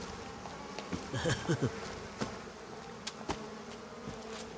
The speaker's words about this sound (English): I got the bees.